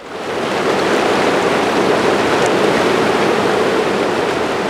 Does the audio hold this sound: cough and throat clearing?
no